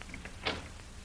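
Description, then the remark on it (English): A cell door is opened with a single brief scraping clunk, fairly quiet against a low background hum, with no voices present. “I'll open the door.”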